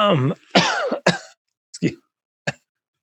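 A man coughs several times in a row, harsh bursts at irregular intervals with short pauses between them, the first ones heavier and more voiced, the last ones shorter.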